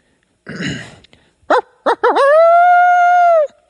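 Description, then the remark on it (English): A person imitates a coyote with their voice: a raspy breathy burst, two short yips, then a long, steady, wavering howl that rises and holds before cutting off. Fairly loud. “Or let me hear the coyote.”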